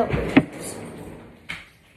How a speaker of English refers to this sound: That ad break brought to you by Ace not knowing how to close a door.